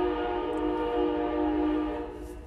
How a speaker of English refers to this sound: And we hold for train.